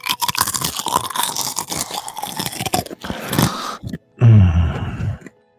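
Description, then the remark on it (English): Loud crunching of a crispy Bugle corn snack being chewed, a dense run of crackling bites, a brief pause, then a final burst of muffled chewing. “this is the crunching of the bugle.”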